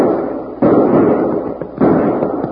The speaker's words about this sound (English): That must be Bill shooting. Yeah, there he goes on buckshot.